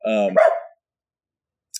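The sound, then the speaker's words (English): A single sharp dog bark, a harmonic yelp that breaks into a rougher woof and cuts off, followed by silence and a brief faint click at the end. “We have a dog running around here.”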